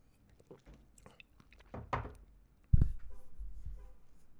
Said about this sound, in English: Pardon me as I take a sip of my drink.